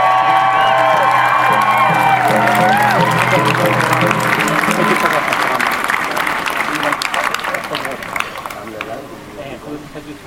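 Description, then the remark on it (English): A large crowd at a Free Palestine rally breaks into sustained applause and cheering for the day's speakers, with high whoops and shouted voices early on, then dense steady clapping that thins slightly toward the end. “Can we get one big round of applause for all our speakers today?”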